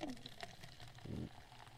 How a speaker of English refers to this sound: The ASMR for pouring Coke.